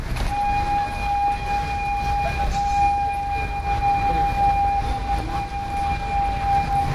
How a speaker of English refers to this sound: It's just a whistle sound that we heard. It might be from the train.